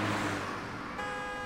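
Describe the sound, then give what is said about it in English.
A driverless autonomous car passes by on a wide street of a small town in Silicon Valley, its steady road and engine noise loud throughout the brief moment, shifting slightly in tone near the end. No one speaks. “Did you see that car? Of course not. Most people think it's just a clever piece of sound design.”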